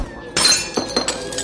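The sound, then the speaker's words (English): A dropped glass brandy bottle smashes on a hard floor with a loud crash, spilling its brandy, followed by a few scattered tinkling clinks of shards settling. “I dropped him, Nameless. Spilt all over the floor.”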